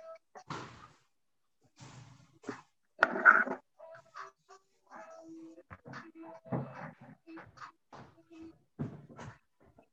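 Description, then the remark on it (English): A pet dog barks in scattered short bursts, with one louder, sharper bark near the middle and quieter yips and rustling noises between them, with no one talking. “My dog clearly needs some attention today.”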